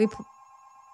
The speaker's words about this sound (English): Excuse me, my podcast line is ringing.